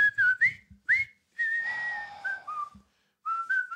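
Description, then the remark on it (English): A jaunty marching tune from a David Lean film, whistled clearly by prisoners of war as they march in, a few short bouncy notes followed by longer held ones, with brief pauses between phrases and no talking. “Is that where that whistle comes from originally?”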